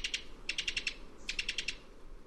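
A Cuban tody's staccato call: short runs of quick, dry, high-pitched notes, first a pair, then two rattling bursts of about five or six notes each, over a faint background hiss.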